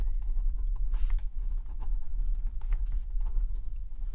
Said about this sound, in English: It's good scribbling noises. It really is.